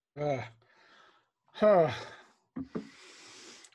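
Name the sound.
sharp gasp on waking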